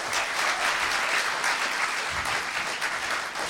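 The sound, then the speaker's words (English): A crowd applauds the performers on stage at the close of a session, a dense wash of clapping hands that holds at an even, fairly loud level throughout without any voices on top. “Yeah, if you could give the guys on stage a round of applause.”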